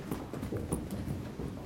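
A person stomps their feet on a floor during a standing exercise, stepping the feet back together, in a quick, steady rhythm of repeated thuds, with no voices over them.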